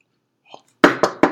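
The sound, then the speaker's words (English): Three quick, evenly spaced knocks on wood, fairly loud, each with a short hollow ring. A faint, brief murmur comes just before them. “If he's healthy, yeah, not, you know, he's knocking on some wood.”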